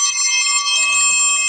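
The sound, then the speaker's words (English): A bell rings loudly and continuously, a bright, steady metallic ringing that holds without pause for the whole moment, with no voices over it. It is rung to mark that someone has eaten another hot dog. “By the way, the bell is apparently he has killed another hot dog, so I'm not looking at him because it'll make me yak.”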